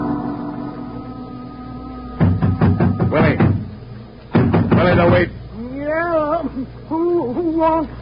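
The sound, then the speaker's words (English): Two bursts of rapid, loud knocking on a wooden shanty door at the waterfront, over a low steady hum, followed by a man's voice calling out. “Open your shanty door”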